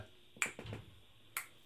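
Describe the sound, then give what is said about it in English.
A barn door being locked: two sharp, crisp clicks about a second apart, with a softer rattling clatter between them, fairly quiet, with no voices. “I think that was just us probably locking the door over in the barn, because this is the point that we're coming back in.”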